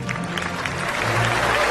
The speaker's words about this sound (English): And Brock was so good about placing these reaction shots from celebrities. Yes. Morgan Freeman clapping at the Mandela joke. Perfect.